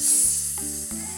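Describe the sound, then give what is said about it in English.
A group of voices imitates a snake, letting out a long, steady, bright hiss that holds for over a second without pause, with low humming tones beneath it. “Can you give me a big hiss? No, not a big kiss. A hiss.”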